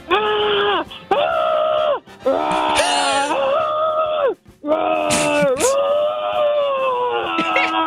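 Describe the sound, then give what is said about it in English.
A man growls and roars in loud, strained bursts, imitating an excited bear as a football player celebrating a Super Bowl win, with rising and falling wails separated by brief gasping breaths, continuous. “You're a Chicago Bears player who can only communicate in bear growls.”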